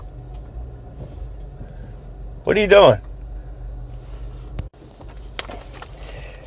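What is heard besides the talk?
inside a moving car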